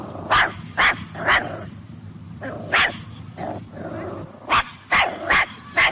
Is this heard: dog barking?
yes